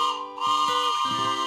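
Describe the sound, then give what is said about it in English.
A toy train whistle, called the Bible train, sounds one continuous, steady chord of bright, high tones for about a second and a half, with lower notes stepping and wavering partway through. No one speaks. “Oh, yay! That's the Bible train!”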